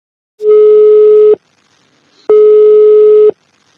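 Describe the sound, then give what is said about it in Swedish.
A telephone ringing tone as a call is placed to someone who recently got a new puppy: two loud, steady mid-pitched beeps, each about a second long, separated by a short pause, with no voices. “Och vi kommer få höra första samtalet redan nu.”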